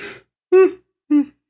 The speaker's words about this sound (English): Nice. I'm leaving that yawn in. Fucking honest energy.